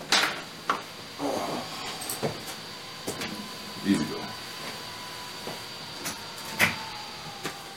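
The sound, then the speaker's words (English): A door is opened for an arriving visitor, with a scatter of sharp clicks and soft thumps from the latch and handle, spaced out over several seconds, with a faint voice murmuring in between. “Dan's coming over, so let me open up the door here.”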